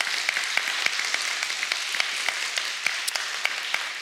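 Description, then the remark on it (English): A church audience at Eaglemont applauds steadily to thank volunteers, many hands clapping in a dense, even wash of sound with sharper individual claps popping out throughout. No one speaks over it. “Again, just church, if we can, one more time, just by applause, just to thank you for all those who volunteered.”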